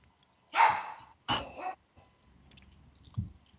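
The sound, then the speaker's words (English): A puppy wanting treats lets out two loud barks in quick succession, then things go quiet apart from a few faint small noises. “Puppy wants some treats.”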